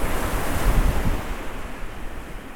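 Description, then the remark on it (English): Steady wind buffets the microphone over the broad wash of surf rolling onto the beach at Westward Ho, with a low rumbling gust swelling early on before settling into a constant roar. “The winds have picked up again after a pleasant day.”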